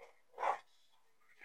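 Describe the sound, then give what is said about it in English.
A single sharp dog bark rings out, loud, followed by a quiet pause and the start of another bark at the very end. The dog, Lucy, is barking at the wall upstairs instead of walking down the stairs. “Instead of walking down the stairs, she's just gonna bark at the wall upstairs.”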